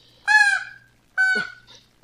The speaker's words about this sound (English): Fuck. What's that? That was a parrot.